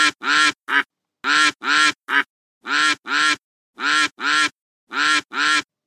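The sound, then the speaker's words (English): A duck quacks loudly, about a dozen nasal quacks delivered in quick groups of two or three with brief pauses between, and no other sounds around them. “Now, when all the laughing and quacking stops, I'll get on with the story.”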